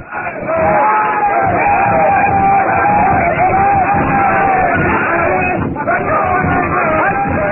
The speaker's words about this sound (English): The natives, satisfied by now that Tarzan and Jane were not in the still smoldering hut, shout to the witch doctor to produce them.